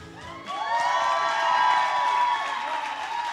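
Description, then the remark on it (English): A church audience bursts into cheering and clapping in support of a group of young men, many voices whooping and shouting together in a loud, sustained swell after a brief quieter start. “Let's clap for them, let's shout for them, and let's show them how much we believe in them and all that God is doing in their lives.”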